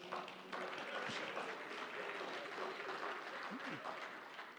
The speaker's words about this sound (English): You can give him a hand now.